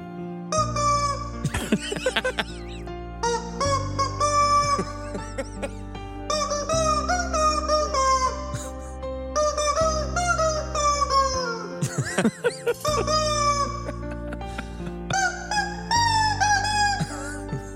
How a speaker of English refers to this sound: the guy holding up this, just see his hands, holding up this rubber chicken, and he squeezes the rubber chicken to make it sing the lyrics.